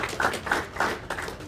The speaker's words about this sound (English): So, yeah, clap for her.